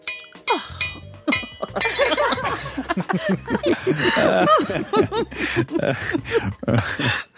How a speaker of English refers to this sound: You whirl around to face me as you gloat and accidentally knock your glass of Pinot Noir to the ground.